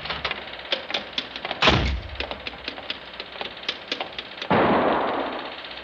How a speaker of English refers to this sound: Hey, that was a gun. Who's there? Miss, did you hear a gunshot?